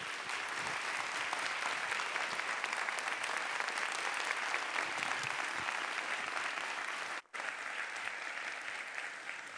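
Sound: audience round of applause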